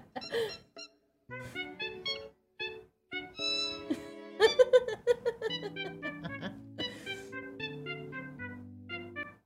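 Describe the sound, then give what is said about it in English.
A bird whistles and chirps a bouncy melody in step with cheerful Wii video game music, clear tonal notes hopping up and down over a low, steady bass line, fairly loud. “That's a very talented bird.”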